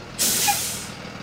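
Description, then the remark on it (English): A sudden loud hiss of air brakes releasing as a bus pulls up in front of a church, starting sharply then slowly fading over about a second, with no voices. “Outside, the bus pulls up in front of the church.”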